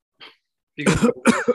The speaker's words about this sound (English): Oh, we're all right, I guess. As I sniff.